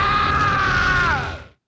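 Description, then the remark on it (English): A single loud, drawn-out cartoonish yell from the villain Aku as he is struck by a big swipe of a magical sword, held steady for over a second before its pitch drops and it quickly fades out. There's no talking, just the cry alone. “And he takes another big swipe at Aku, and Aku lets out a big yell, which again is the same exact yell that he did earlier.”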